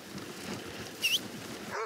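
Sled dogs on a winter dog-sleigh ride through pines on alpine pasture let out a couple of brief, high whimpering cries over steady windy outdoor noise, one sharp whine midway and another short yelp right at the end.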